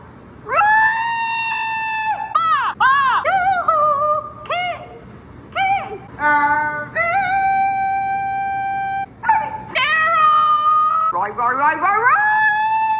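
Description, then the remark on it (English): A person yells a series of loud, drawn-out calls with long held notes and swooping pitch at the husband calling competition at the Iowa State Fair, alone with only brief pauses for breath. “I'm about to play some clips and there will be screaming really legitimately loud”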